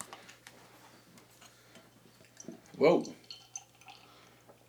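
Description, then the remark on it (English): A Hot Butcher beer can, packaged under a month earlier, snaps open with a short, sharp fizzing burst, followed by faint liquid splashing into a glass, while a person briefly exclaims. “So, let's go ahead and get this open, get it into a glass.”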